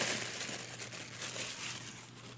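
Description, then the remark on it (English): Steady crinkling and rustling of pink wrapping paper being pulled open as a gift is unwrapped, a dense crackly texture running continuously for a couple of seconds with no voices. “Okay, so taking a look here in the pink wrapping paper. This is for the ASMR listeners.”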